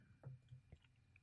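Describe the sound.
A few quiet, wet mouth clicks, two or three in quick succession, made as a vocal imitation of a seatbelt buckle snapping shut, with no talking over them.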